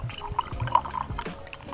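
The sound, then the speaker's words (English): A drink being poured into a glass for a toast, with a steady gurgling and splashing of liquid for a couple of seconds and no voices. “Friends, wherever you are, grab a drink.”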